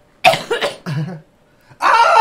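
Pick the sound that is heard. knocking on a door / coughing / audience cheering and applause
coughing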